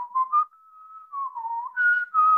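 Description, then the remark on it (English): A person whistles a short, wavering melody, the clear tone sliding up and down in pitch for a couple of seconds with no talking over it. “We couldn't hear your whistle.”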